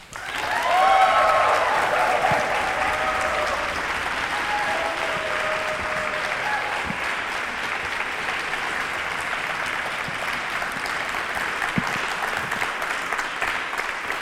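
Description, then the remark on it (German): Sustained audience applause, a dense steady wash of clapping hands lasting the full stretch, with a few brief whistles or cheers near the start and no speech over it. “Wie klingt denn so ein Applaus?”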